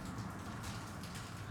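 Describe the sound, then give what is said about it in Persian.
Steady rain that has been falling for several minutes, a soft, continuous hiss of drops with a faint low rumble underneath, fairly quiet and unbroken throughout, with no voices. “گوش کن اینو، الان میدونی که چند دقیقه است داره بارون میاد”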